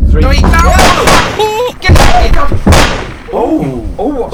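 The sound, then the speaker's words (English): A door is yanked open on a beast that was scratching at it, and a loud gunshot cracks out, with a second sharp blast soon after. Excited voices fill the moments before and after the shots. “Right, so what happens is, what I want you to do is, you whip the door open real quick and I'll shoot, right?”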